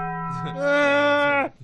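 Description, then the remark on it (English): A single sustained, tuned tone, likely a voice imitating the Taco Bell bell chime, rising in loudness and then cutting off abruptly after about a second and a half. “That's Taco Bell.”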